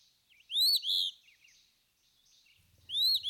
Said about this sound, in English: Another April bird which makes her appearance sometimes earlier and sometimes later than robin, and whose memory I fondly cherish, is the Phoebe bird, or the pioneer of the flycatchers.